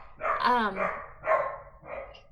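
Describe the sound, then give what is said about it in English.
A pet dog barks three times in quick succession, moderately loud, each bark a short harmonic yelp with brief pauses between. “So, don't mind my dog.”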